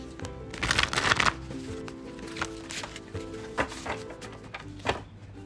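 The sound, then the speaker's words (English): A deck of tarot cards being shuffled, a dense riffling burst early on followed by several sharper, spaced snaps and taps of cards, with no talking. “Shuffle the deck.”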